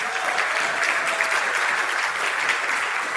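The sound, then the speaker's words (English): An audience at a church service claps steadily for two people standing up, a dense wash of many hands applauding at an even loudness for a few seconds, with no voices rising above it. “why don't you two stand up and give them a clap in the Lord.”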